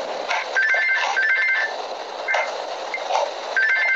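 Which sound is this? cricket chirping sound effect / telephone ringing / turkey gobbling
telephone ringing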